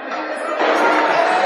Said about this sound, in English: And you can hear the crowd rooting for Asia Wilson. They said, hey, there's a 50 burger that's on the line here. Could she get to 50?